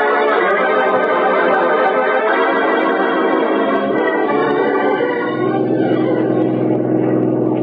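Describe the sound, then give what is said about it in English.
A loud, steady car engine roars at high revs, droning continuously with a harsh, buzzing tone that shifts slightly in pitch, as the car speeds flat out with the accelerator floored while being chased by another car. No voices are heard. “Steve, I got my foot on the floor now. We gotta do something, then. We'll never lose that car that's chasing us.”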